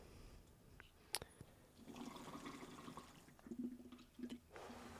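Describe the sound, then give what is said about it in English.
Gurgling of water bubbling in a bong holding a lot of water, with a big, deep bowl that has its own screen, as someone pulls hard through it; a steady churning burble lasting several seconds after a brief sharp click, with no one speaking. “It has a lot of water, so you got to pull through.”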